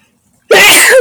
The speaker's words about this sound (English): Now I'm going to sneeze.